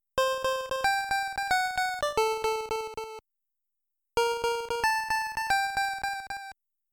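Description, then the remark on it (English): Bright, buzzy chiptune notes from a song play a short melody, each note rapidly re-attacking and fading in a single-channel echo with an overall decrescendo on top, sounding jangly. The phrase plays twice, separated by a pause. “This time it's a single channel echo, where the notes repeatedly attack and fade with an overall decrescendo on top.”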